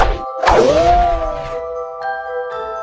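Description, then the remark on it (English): A short rustling burst in some bushes nearby gives way to a loud, bright ping whose ringing tone bends in pitch inside a rushing whoosh, then lingering chime-like tones step in and fade. “You're not standing there alone long before you hear a rustle in some bushes nearby, followed by a pinging and then a whooshing sound.”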